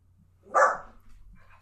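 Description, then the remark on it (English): A single sharp dog bark, a sound effect from the film Cold Mountain, rings out at moderate loudness against a quiet background, followed by a faint trailing sound; no one speaks. “The dog is an effect of the movie, by the way.”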